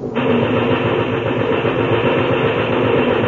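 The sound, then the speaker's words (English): A herd of stampeding horned steers belonging to Senor Pareda thunders past on each side in a loud, unbroken roar, the dense drumming of hooves churning steadily throughout with no voices. “Look at them go by on each side, Chuck. Look at those horns torn. I never heard such a noise like that in all my life.”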